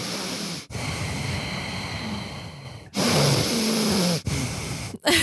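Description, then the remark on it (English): A voice imitates a 6-year-old girl's congested breathing, heard over a baby monitor at night, because she refuses to blow her nose: several long, loud, wheezy snorting breaths separated by brief pauses, one with a faint whistling tone, alone. “And so when we fall asleep at night with the baby monitor, we hear.”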